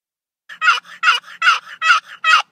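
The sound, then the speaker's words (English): A small wooden box turkey call with a hinged lid, rocked back and forth, imitates a hen's yelp as she tries to find her flock: five raspy, loud yelps in a steady rhythm, each followed by a softer note, with no talking, in woods where turkeys had been earlier in the day. “With a rhythmic cadence, he rocked the lid back and forth, creating a sound that mimicked the yelp of a hen trying to find her flock.”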